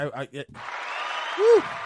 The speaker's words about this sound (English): Yes. Yes. I applaud myself. Bloody brilliant.